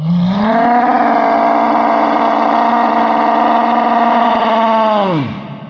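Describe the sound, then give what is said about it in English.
A loud, sustained, ear-splitting, earth-shaking low growl with a raspy, buzzing rumble, given as the signal for climbers to start. It swells in at the start, holds steady for about five seconds, then drops in pitch and fades out. “And then Pops let out an ear-splitting, earth-shaking, grumbling growl.”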